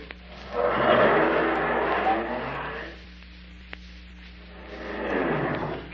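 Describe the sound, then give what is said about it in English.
A car that was blocking the drive is driven off to be parked: its engine revs up and pulls away, a loud rumbling surge followed by a quieter lull and a second rising roar, over a steady low hum. “That car's blocking the drive. Will you park it?”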